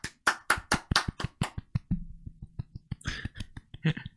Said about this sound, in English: Golf clap.